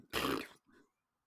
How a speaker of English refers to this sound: Yeah. Big fart.